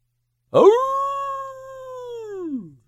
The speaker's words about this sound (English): It was the wolves. He saw them in the distance running down the beach.